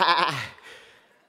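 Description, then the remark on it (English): A single loud, nasal "baa" voiced by a person mimicking a sheep, harmonic and wavering for about half a second before trailing off into a fading tail. “Sheep kind of have a tendency when they roam into trouble. They roam into a mess. Bah!”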